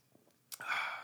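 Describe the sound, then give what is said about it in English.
A quiet pause, then a breathy slurp as someone takes a sip of a drink, a soft airy rush lasting about half a second. No one speaks. “So one thing, I should take a sip first.”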